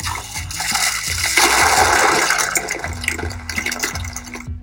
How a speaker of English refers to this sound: I just splashed one of the buckets, and so it was the sound of water being controlled by Bitcoin.